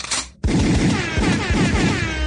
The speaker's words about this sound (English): could I have a gunshot and an air horn?